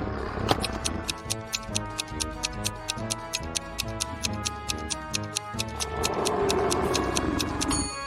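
A steady clock ticks at an even, brisk pace over a bed of light, playful background music, each tick crisp, with the music swelling slightly near the end.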